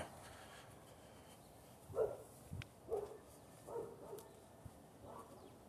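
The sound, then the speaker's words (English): A dog in a yard barks outdoors several times, a loose run of about six muffled woofs over a faint background hum, with no one talking. “A dog in a yard, not a cat.”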